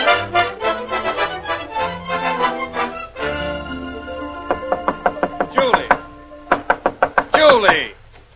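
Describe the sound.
Someone bangs on a bedroom door: after a few seconds of tonal sound, a rapid run of loud, sharp knocks follows, about a dozen evenly spaced blows with brief voice sounds mixed in.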